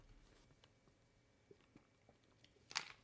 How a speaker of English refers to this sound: We've got our second segment sip. And you know what that means.